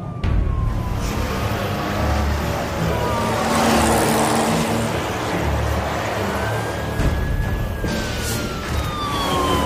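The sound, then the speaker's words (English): A police traffic patrol car siren wails in slow rising and falling sweeps over a loud, steady roar of engine and road noise as it pursues a speeding 1926 Bentley doing 110 off the M25 at junction 16, east of Slough. “Traffic 327 pursuing speeding vehicle off M25 at junction 16.”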